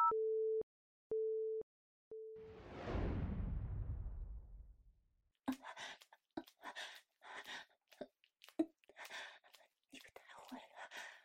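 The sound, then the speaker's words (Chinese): Three steady phone beeps of a busy tone pulse at an even pace after a call is hung up, then a rushing burst of noise, followed by a breathy whispering voice. “老公，先这样吧，我挂了啊。”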